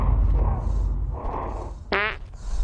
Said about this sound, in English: And then the astronaut farts, and the monster discovers him.